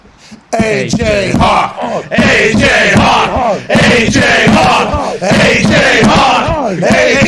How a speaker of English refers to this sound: And I'm excited about how much you love that AJ Hawk chant, because it brings energy to every single place it's a part of.